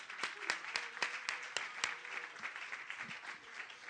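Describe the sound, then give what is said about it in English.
A speaker claps his own hands: sharp claps ring out in a quick, steady rhythm, about seven in a row, then trail into softer, scattered clapping with a faint murmur of voices behind. “I clap myself.”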